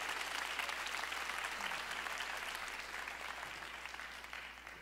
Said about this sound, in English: And so I want to give a big welcome today to every one of our Calvary locations and every one of our GCCM churches. Would you clap your hands and give them a good welcome today? Come on, church.